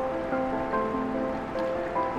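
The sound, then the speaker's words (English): A steady, continuous wash of rushing water from a river or stream flowing in Yosemite National Park, with a few faint sustained tones running beneath the even rush. “Flowing water is the pulse of the earth, is the pulse of Yosemite.”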